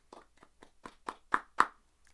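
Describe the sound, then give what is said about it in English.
A short burst of people clapping for Bilbo: about eight sharp, crisp claps at a quick, steady pace, growing louder toward the end before stopping, with one faint clap trailing after. No one speaks. “Everybody clap for Bilbo.”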